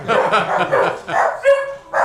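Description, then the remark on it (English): Several dogs bark and yip excitedly in quick, overlapping bursts, fairly loud, with a brief whining tone in the middle. “And the dogs think she's outside without them.”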